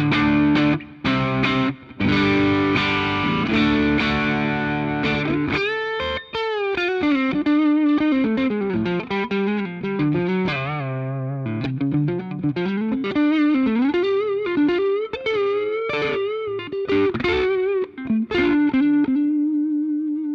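electric guitar

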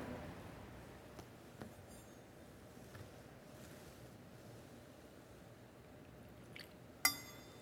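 water poured into wine

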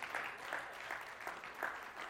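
audience hand clapping

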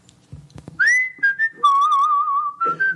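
man whistling a tune

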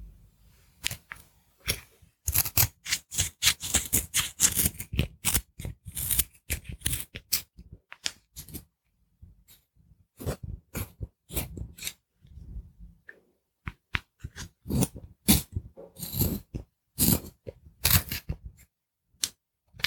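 pencil being sharpened

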